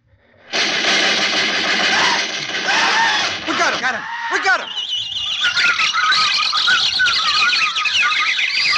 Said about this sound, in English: And as we shot, 10,000 parrots and macaws started screaming in fright at the sudden outburst. We stood there surrounded by the din of those parrots. Oh, it was terrifying.